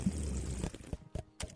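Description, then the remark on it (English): Wet, sloppy beer-drinking sounds: a gurgling, liquid rush followed by a few separate loud slurps and gulps, with no talking. “You drink beer like you eat wings. It's disgusting.”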